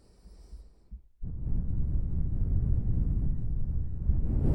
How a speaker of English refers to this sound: That's just me breathing.